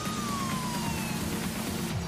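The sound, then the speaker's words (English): A police car siren in a video game wails in a slow, falling tone over a steady engine rumble, continuous, with no one speaking. “It's not your turn on your sirens.”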